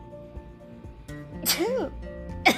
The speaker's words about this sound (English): Hold on, I gotta sneeze.